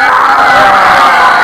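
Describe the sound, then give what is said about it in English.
A crowd of people loudly imitates lion roars together, a dense, sustained wall of overlapping growling and screaming voices that holds steady for a second and a half without pause. “Everybody make the lion noises.”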